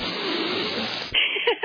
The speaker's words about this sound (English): And I also think now there's no more debates, but I think he could have used a training session on breathing when you have a lavalier mic. How many different times did you hear this during the debate?